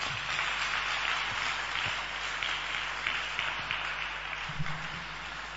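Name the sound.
audience clapping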